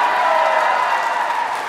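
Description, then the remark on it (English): An audience bursts into a steady round of applause when asked to clap if smoking weed causes them more anxiety. Dense clapping is blended with some crowd noise and holds at an even, fairly loud level throughout the short stretch, with no one speaking. “Round of applause if smoking weed causes you way more anxiety.”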